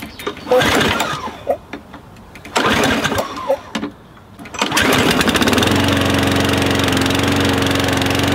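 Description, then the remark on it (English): A lawnmower engine is yanked twice with sputtering pulls, then catches on the third try and settles into a loud, steady, buzzing drone. “I'll start the lawnmower.”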